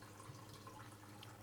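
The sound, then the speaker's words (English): Black Box red blend boxed wine trickles steadily from a spout into a cup, a faint, continuous liquid stream with a soft low hum underneath and no voices. “So let me pour here. And this is Black Box. It's a red blend.”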